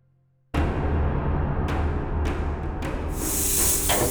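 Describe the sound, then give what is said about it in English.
A loud, rumbling noise bed with several sharp airy bursts, ending in a long, intense hiss of a snake, loud, with no voices. “Get back! Back, you snake! Or taste my sword!”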